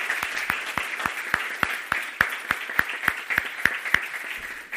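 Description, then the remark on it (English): A crowd applauds, a steady wash of clapping carried along by a few sharp, evenly spaced claps, building slightly before tapering off near the end. “Hey, let's give them another round of applause so they can hear us.”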